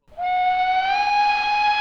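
A loud, sustained train whistle sounds alone as the train Pride of Duskwall arrives, a steady bright tone with rich harmonics and a slight rising pitch, holding for nearly two seconds over a faint hiss of steam.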